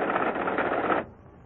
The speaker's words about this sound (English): And so we dial 091. And in practically no time at all, the computer prints out on this typewriter everything we need to know. No sooner said than done.